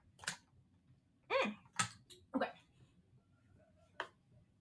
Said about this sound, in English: All right, let me get my shit together over here. Let me take a quick sip of my water.